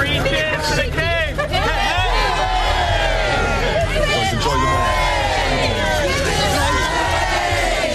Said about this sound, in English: Some in the crowd shouted God save the King as he arrived in the Mall. He was joined by the Prince and Princess of Wales to shake hands and take selfies with people lining the street, some of whom have been there since last night.